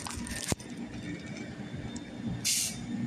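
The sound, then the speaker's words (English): A train rumbles in steadily, with a sharp metallic clank early on and a bright burst of hissing air near the end, like brakes releasing as it pulls up. “And I think this is my train.”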